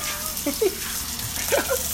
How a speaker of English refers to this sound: You getting the sizzle there? Oh, let's get to the sizzle.